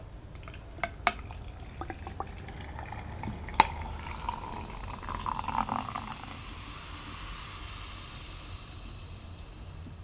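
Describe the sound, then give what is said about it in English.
Water trickles and drips, a run of sharp irregular plinks and splashes easing into a steady soft hiss of flowing liquid. No one speaks. “Oh, I love this water.”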